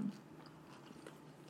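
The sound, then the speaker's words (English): A crisp crunch of someone biting into food, followed by a few quieter chewing crackles, fairly quiet and with no talking. “Got in that nice crunch.”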